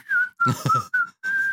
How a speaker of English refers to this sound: You feel like you need to start whistling now?